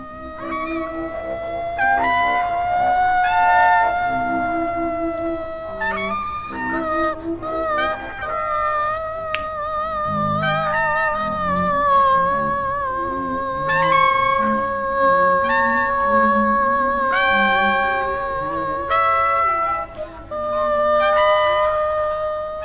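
Abstract instrumental rock plays with sustained, wavering electric tones that sound almost honking, layered over a low rumbling backdrop at a steady, fairly loud level, with no voices throughout.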